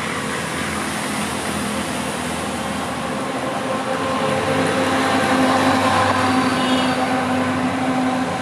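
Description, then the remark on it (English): A heavy truck rumbles past, a steady roar of engine and road noise that swells louder around the middle and stays strong toward the end, with no voices. “Trucks are so nice. They're big ass. Everybody is scared of them.”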